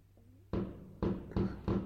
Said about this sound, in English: Oh wow. Firework. Well, that's going to be great. Oh, it's firework night. Yeah. You're going to hear it.